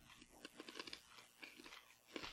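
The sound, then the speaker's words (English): Someone chews a crunchy clove snack, a quick, irregular run of dry crunches and bites with no talking. “Yeah, it's not, like I said, it really is just a crunchy clove.”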